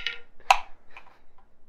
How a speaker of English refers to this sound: I love that you have a dice tray and you keep picking it up to roll.